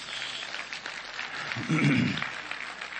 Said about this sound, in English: So you can applaud that if you want, I guess.